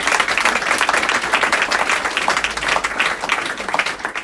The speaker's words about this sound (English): So a huge round of applause, please